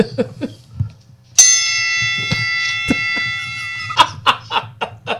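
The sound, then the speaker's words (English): A bell strikes suddenly and rings out with a bright, sustained metallic tone for a few seconds, loud, over a low rumbling background with scattered short knocks before and after. “But it's just ring the bell”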